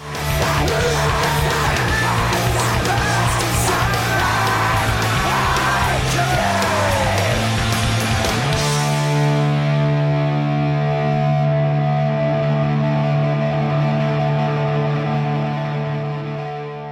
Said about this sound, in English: It's that dope-ass scream there in the background. Dang. So fucking rad.